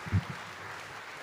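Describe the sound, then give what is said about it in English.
A church audience at a Christmas service claps for Jesus together in a steady wash of applause, with a brief low thump at the start before the clapping continues evenly throughout. “Can you just clap for Jesus?”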